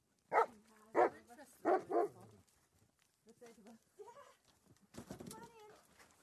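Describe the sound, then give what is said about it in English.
Dogs bark three times in quick, evenly spaced succession, loud, followed by people talking in the background. “I told them to come see the dogs.”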